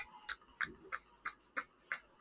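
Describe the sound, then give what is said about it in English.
Steady, rhythmic hand clapping by a person joining in with others who are clapping: about seven or eight sharp claps at an even pace, fairly quiet with no voices over it. “Are you, like, clapping, or...? No, they're clapping, so I decided to add to it.”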